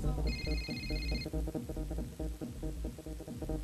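A telephone rings with a short, bright electronic trill lasting about a second, then stops, while a busy, rhythmic background of low sound continues underneath.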